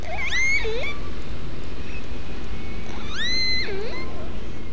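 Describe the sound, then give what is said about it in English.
Two matching resident killer whale calls, one recorded in 1958 and one in 2018, each a rising, sweeping whistle with harmonic overtones and a short buzzy tail, separated by a pause over a steady underwater hiss and low rumble. “Listen to how similar this call from 1958 sounds to this recording from 60 years later in 2018.”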